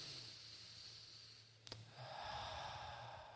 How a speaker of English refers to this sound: So let's just get everyone breathing in their belly. Learn to breathe better.